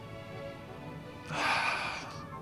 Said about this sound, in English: Oh, these nugs look real good. Little nugs. Let's go ahead and get a sniff, shall we?